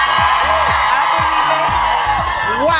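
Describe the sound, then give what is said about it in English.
A big outdoor holiday parade crowd of parade goers and participants roars steadily, many voices cheering at once with scattered rising whoops cutting through. The noise is loud and continuous for the whole stretch, with no single voice standing out. “I heard from sources that this may be our biggest holiday crowd yet.”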